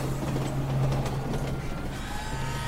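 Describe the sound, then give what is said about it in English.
A loud, steady mechanical rumble of an elevated L train rolling past, the 1:42 p.m. train headed downtown, with a low droning hum, rattling clacks along the tracks, and a faint rising whine near the end. “And there's the 1:42 p.m. L train headed downtown.”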